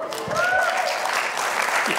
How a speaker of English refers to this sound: Felt like you guys were kind of waiting for a cue to clap. I mean, baptism, if there isn't something worth clapping about in church, it is baptism.